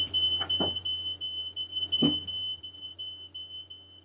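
A fire alarm in a house sounds a steady, shrill high-pitched tone throughout, with a couple of brief dull knocks and rustles in the background.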